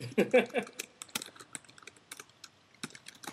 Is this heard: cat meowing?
no